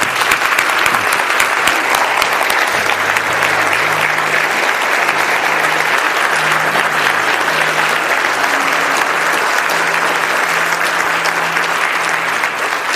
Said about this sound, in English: I want to give you the chance right now, just through verbally, through your applause or whatever, just to affirm these men, thank them for what they're doing, and let them know that we support them in this process. Would you do that with me, please?